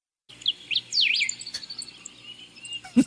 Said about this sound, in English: There are birds in the background, we know.